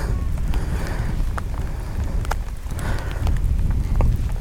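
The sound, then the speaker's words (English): Steady outdoor rain on a path by a castle, with scattered sharp drips and taps over a low, rumbling wash of wind. The sound stays fairly even and continuous throughout, with no voices. “So again, 30 seconds in the rain.”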